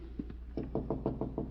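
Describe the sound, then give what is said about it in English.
Knocking on an apartment door in a hallway: two soft taps, then a quick, steady run of about seven firmer raps, fairly loud and hollow-sounding, with no voices. “Nobody's there. Sounds hollow.”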